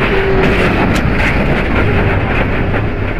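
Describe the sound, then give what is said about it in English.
Loud, constant roar and rattle from inside Earnhardt's stock car at speed as it crashes into the wall at between 156 and 161 miles per hour, unbroken for the whole stretch, with no voices. “This is audio from inside Earnhardt's car”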